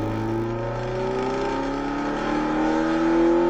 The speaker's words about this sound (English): VTEC! Dude! It sounds so good with that eBay exhaust.